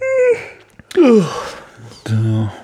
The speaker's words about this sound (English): Sorry for all the yawning, everyone.